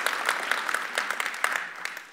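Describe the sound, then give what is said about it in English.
An audience applauds steadily, a dense wash of many overlapping claps with a few sharper hand claps poking out, holding fairly even before thinning slightly at the end, welcoming Earl Palmer as he begins leading a discussion. “Will you give me a big round of applause for Earl Palmer as he leads in his discussion?”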